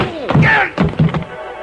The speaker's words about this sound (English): The front of his gun slapped against the side of my head, and I went down to my knees.